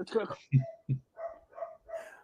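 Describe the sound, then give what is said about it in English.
A dog barks several times in a quick, evenly spaced series of short, fairly loud barks, following a brief bit of human voice at the start. “Dogs agree.”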